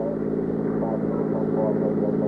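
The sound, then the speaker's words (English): A car drives along with a steady, droning engine hum and low rumble that holds constant throughout, heard from inside the vehicle as it is driven to 73rd Street and 3rd Avenue. “I got in and we drove to 73rd Street and 3rd Avenue.”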